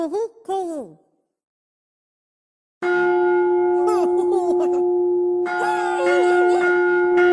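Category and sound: sound effect, gong ringing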